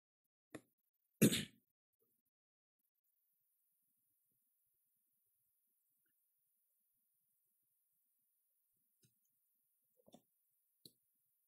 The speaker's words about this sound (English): I love the sound of pages turning.